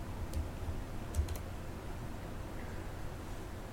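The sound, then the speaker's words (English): A handful of sparse computer keyboard keys click softly, a lone tap followed by a quick cluster of two or three, over a steady low background hum with no one talking. “I have another keyboard plugged in because of that.”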